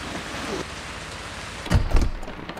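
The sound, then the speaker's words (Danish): Rain falls in a steady, even hiss, interrupted late on by a few heavier thuds and knocks before the patter settles back. “Vi når bare aldrig frem, altså, hvis vi skal have alle ud af regnen.”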